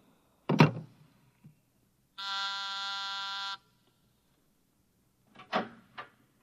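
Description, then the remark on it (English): An intercom buzzer is pressed to summon someone, sounding once, a loud, harsh, steady electric buzz lasting about a second and a half, with brief clunks before it and a couple of knocks after. “You buzzed, Mr. Burkhart?”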